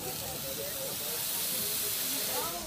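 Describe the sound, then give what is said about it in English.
Burger patties seasoned with garlic, onion, salt and pepper sizzle on a Blackstone griddle outdoors on a warm day, in a steady, dense hiss that holds at an even loudness throughout, with faint voices murmuring underneath. “We would call that a sizzle in English, that sound.”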